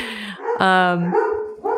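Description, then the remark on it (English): Dogs bark, one drawn-out, loud bark standing out among shorter yips and woofs, the barking running continuously through the brief moment. “And there's the dogs. Probably the UPS man.”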